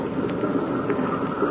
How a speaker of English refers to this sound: That must have been Ivan Shark. He left the engine, this plane running. Hear him idling?